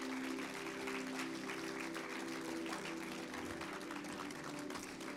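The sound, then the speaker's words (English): A crowd claps steadily and loudly for about five seconds for ten volunteers being called up, a dense wash of many hands with a low sustained hum underneath and no voices rising above it. “Give my volunteers a wonderful round of applause.”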